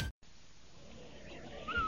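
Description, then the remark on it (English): A brief whistle, the Rinso signal on the Amos and Andy Show radio broadcast, slides upward in pitch near the end, after a steady low hiss with no talking. “Say, Andy, did you hear that whistle?”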